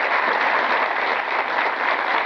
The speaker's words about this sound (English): You grew up in the church. Yes, please clap for that.